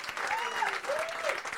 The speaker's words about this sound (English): Rousing applause for them.